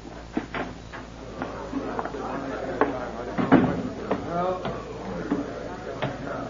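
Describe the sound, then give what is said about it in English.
A door opens and shuts, with latch clicks, a creak and a solid thump midway, while muffled voices murmur in the background. “Through this door, Chief.”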